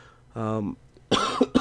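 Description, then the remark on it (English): A short voiced hum, then a loud cough burst right into the microphone, sharp and breathy, with a quick second hack trailing at the end. “And then I'm going to cough into the microphone.”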